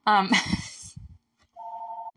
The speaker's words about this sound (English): Phone's ringing, but I'm gonna ignore it.